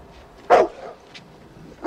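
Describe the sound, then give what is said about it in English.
The dog Hooch gives two loud, sharp barks spaced more than a second apart, with a faint yip between them and a low murmur in the background. No one speaks. “Hey, you're not going to shoot this dog.”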